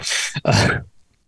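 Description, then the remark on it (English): A single loud sneeze: a sharp breathy intake followed by an explosive burst, then near silence. No one talks during it. “if you sneeze, we'll deal with it”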